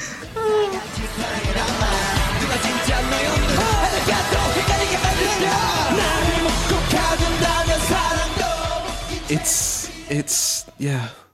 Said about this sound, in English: And he just straight up, like, it's not a belt, it's not a shout, it's a scream with the most incredible voice crack I think I've heard from a K-pop idol in a very long time.